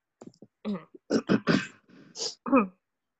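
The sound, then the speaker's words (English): A person clears their throat in a series of short, rough, guttural bursts packed into a couple of seconds, with no talking around it. “I'm clearing my throat.”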